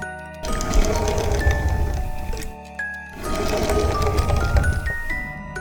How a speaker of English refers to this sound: The story begins with a toy car rolling, distant echo of a ghost's voice